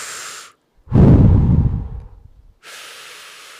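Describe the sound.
A voice imitates Darth Vader's heavy mechanical respirator breathing from Star Wars: a thin hissing inhale, a short pause, a loud rasping exhale, then another hiss, alone with no talking.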